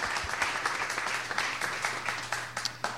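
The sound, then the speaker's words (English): A crowd applauding, dense overlapping claps forming a steady, fairly loud patter that holds for the full three seconds with a few sharper individual claps standing out. “Okay, can we get a round of applause, please?”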